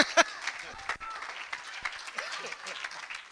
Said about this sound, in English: I should have left that part out. Maybe they were clapping and didn't hear that.